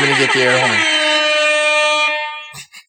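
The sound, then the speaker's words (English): A loud, sustained air horn blast holds a steady harmonic tone for about two seconds, then cuts off, followed by brief muffled knocks. “That was the air horn.”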